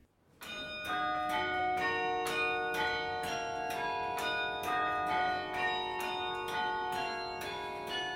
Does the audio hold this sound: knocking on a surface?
no